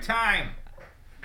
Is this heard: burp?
no